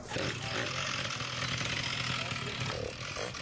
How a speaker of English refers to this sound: It sounds like Moped's Running, for those who don't know.